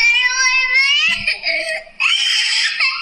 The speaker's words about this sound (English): Oh, that my jaw dropped when I heard that peak that the scream gets to. I'm so familiar with that.